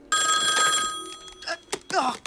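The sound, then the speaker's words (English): A loud telephone bell rings in one sustained burst of about a second in a movie scene where Max answers a phone, then fades as short snatches of a voice follow. “Like there's a scene where Max answers a phone.”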